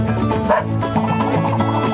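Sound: dog barking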